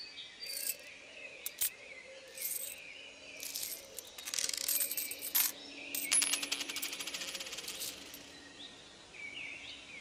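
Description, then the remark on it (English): Gold coins clatter and jingle in several bursts as a handful is emptied from pockets onto a stump in a park, bright clinks ringing, with faint outdoor insect chirping in the background. “Now, can I ask where you acquired all these gold coins?”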